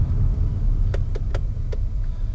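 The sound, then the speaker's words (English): Steady low rumble of a car's engine and road noise heard from inside the car while driving to a party, with a few sharp, quick ticks or clicks scattered over the drone. No one speaks. “I'm on my way to golf end of the year party right now, so I'm recording this podcast in the car because I forgot about it.”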